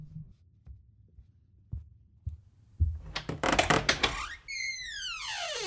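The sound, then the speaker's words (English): Several dull, low knocks on a door come at an uneven, unhurried pace, then give way to a loud burst of noisy clatter and a series of falling, whistling electronic tones. No one speaks. “Yeah, I think there's someone knocking at the door.”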